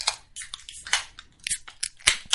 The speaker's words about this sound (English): Let's crack a Busch Light for the Buckatorium.